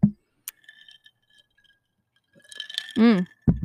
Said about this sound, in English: Take a sip first.